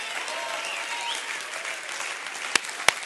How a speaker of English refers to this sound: I wonder if you could just clap your hands for a Savior today, and beside somebody that's saved beside you.